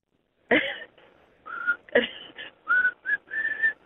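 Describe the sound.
Someone whistles a short, halting melody, the tune broken into uneven phrases with breathy attacks and gaps between notes, sounding like a tentative attempt at the whistled melody of a rock song.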